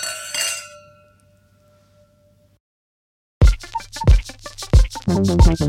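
Glasses clink together in a toast: one bright chime that rings out and fades over about two seconds. After a short silence, loud rhythmic music begins.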